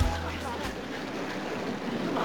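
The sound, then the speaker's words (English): Rain falls in a steady, dense hiss that holds at an even loudness for a couple of seconds. A low rumble sits underneath at the very start, then fades. “Oh, rain! Rain! He made it rain!”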